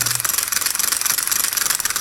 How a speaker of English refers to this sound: I felt like it might be a little bit too easy of a clue if I said a recreational sports object. That is a fishing reel.